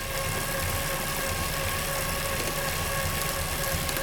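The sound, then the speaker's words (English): A Wahoo-free note: a Kickr smart bike trainer whirs steadily under a 400-watt load, reading mainly in the mid 60s dB. It is a constant loud mechanical drone with a few sustained humming tones and no change in pitch or volume, with no voices. “The Kickr at 400 watts.”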